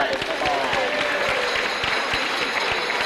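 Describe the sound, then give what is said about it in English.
An audience claps steadily and loudly, a dense wash of many hands with scattered sharper claps standing out, sustained for the whole few seconds with a faint murmur of voices underneath. “Let's give her Jesus all the clap.”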